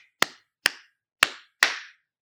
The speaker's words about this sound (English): Okay, that was. I don't think we're both supposed to clap. I think one of us was. Anyway, right? Whatever. We clapped. There it is. We both clapped. Poorly.